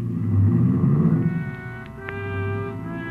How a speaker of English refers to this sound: Ibarra was grim as he climbed in his car and drove off fast